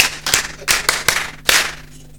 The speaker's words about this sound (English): I beg, may we clap for them like two people. Again.